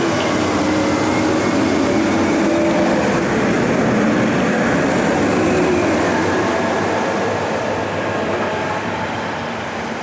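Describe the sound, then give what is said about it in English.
A loud truck rumbles past with a steady, dense roar of engine and road noise that holds for several seconds, then eases off slightly toward the end. No one speaks. “Oh, look, now there's a loud truck.”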